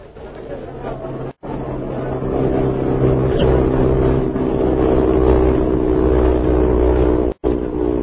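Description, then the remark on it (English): A loud, steady roar of a swift airliner's engines droning overhead as it passes over the airfield by the passenger terminal and comes in to land, thick with low rumbling hum, swelling slightly midway and briefly cutting out twice. “Leaving his plane in the hangar, he has walked down to the passenger terminal just as a swift airliner roars over the field and prepares to land.”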